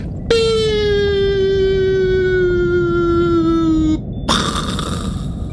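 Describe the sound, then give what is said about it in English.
A voice imitates a Whistling Moon Traveler bottle rocket, holding one long, steady whistle that slowly slides lower for several seconds, then cuts off into a short, breathy burst like a pop. “I would say we would get the Whistling Moon Travelers because they make a really fun noise. What do they sound like?”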